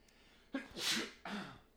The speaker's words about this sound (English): Bless you.